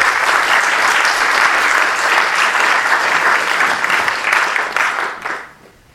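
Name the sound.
audience applause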